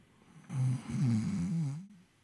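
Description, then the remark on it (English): A single long, rattling snore drawn out for over a second, fairly loud, performed by a voice imitating a character snoring asleep in a bedroll on the floor of a tent, with no talking around it. “He sees the form of Corin Hillborn snoring away in his bed.”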